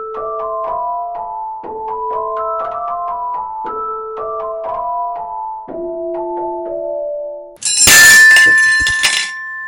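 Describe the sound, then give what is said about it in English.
A music box tinkles a steady, bright plucked melody for several seconds, then a single loud, abrupt smash of a sledgehammer cuts it off, leaving a jangle of clattering metal and lingering high ringing tones. “I gotta admit, this smashing is kind of fun.”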